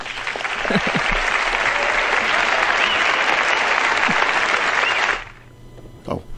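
A crowd breaks into loud, sustained applause with cheering mixed in, a dense steady roar of clapping for about five seconds before it cuts off abruptly, leaving faint murmurs.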